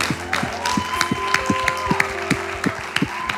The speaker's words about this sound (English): And right there at home, I want you to put your hands together and welcome this crowd as they share God's word.